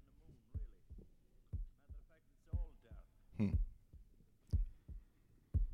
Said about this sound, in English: Now, we will probably cut this a little early, but let's just play a little bit further in it. This is, you'll start hearing the heartbeat coming back.